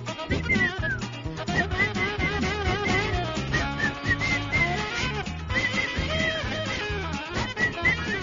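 Someone whistles a high, wavering tune with sliding notes, somewhat off-key, over a steady, dense musical backing with a rhythmic low end, lasting the whole stretch.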